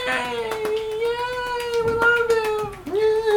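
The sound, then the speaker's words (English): A cat gives one long, drawn-out meow, a steady whining yowl lasting about three seconds that dips and then rises again at the end. It is fairly loud, with no talking over it. “One cat in the background.”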